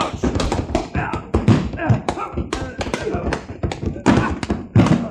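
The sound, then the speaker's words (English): Punches landing in a fistfight by a bar lined with bottles: a rapid, irregular flurry of loud, dull thuds and smacks, one after another for several seconds, with voices mixed in under the blows. “The way you're hitting him, he's going to fall against the bar and upset those beautiful bottles.”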